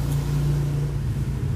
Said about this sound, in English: Traffic, someone on their way to work.